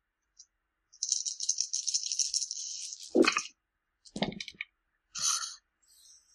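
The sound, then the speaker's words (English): Dice rattle steadily in a cup or hand for a couple of seconds, then clatter down onto a table with a few sharp knocks and a final brief rattle, clear, with no talking; dice rolled during a game. “Roll your brutal.”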